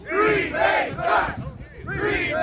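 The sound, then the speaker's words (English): A large crowd, including Green Bay Packers fans, chants "Green Bay sucks!" in unison in cold weather, loud rhythmic shouted phrases repeating about every half second in a steady cadence, voices blending into a roaring mass. “That was an awesome crowd.”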